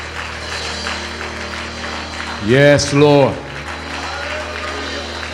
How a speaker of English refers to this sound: Can we clap our hands and give God the glory?